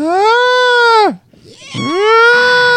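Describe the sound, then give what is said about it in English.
A voice imitates a peacock's call with two loud, drawn-out nasal wails, each about a second long, split by a brief gap. The first holds steady then drops; the second swoops up first. “Turns out it was a peacock.”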